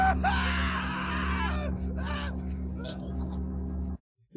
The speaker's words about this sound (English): Smash cut, screaming at it.